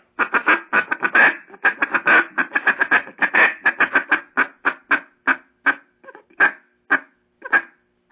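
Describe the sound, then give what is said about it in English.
A duck call blown in a rapid run of sharp, raspy quacks, bunched tightly at first and then spacing out into slower single quacks, loud with no talking. “And as you and then throw your little gut in there, gut, for a quack, just gut.”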